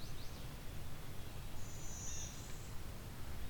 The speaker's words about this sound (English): Sound like a yellow-billed cuckoo.